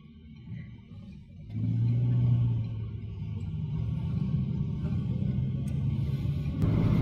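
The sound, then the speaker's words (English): Steady low road rumble from inside a moving self-driving car as it sets off, its steering wheel turning by itself, swelling as it picks up speed and then holding a constant droning hum, with no voices. “We're setting off. The steering wheels are going steadily. We've got another car coming in. Vehicle's going steadily.”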